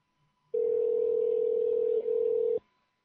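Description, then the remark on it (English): A single steady telephone tone sounds clearly for about two seconds, loud, with a tiny hiccup near the end before it cuts off abruptly. No one speaks. “When the phone rings, let's try again.”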